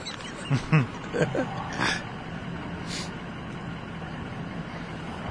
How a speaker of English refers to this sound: So the FBI guy has repositioned his truck. So now they're like head on with each other.